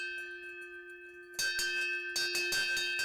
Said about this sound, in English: There was hoses that would come off of that, and there is also a bucket here, and there is a bell on it as well, so that would have been rung as it was being towed to a fireplace.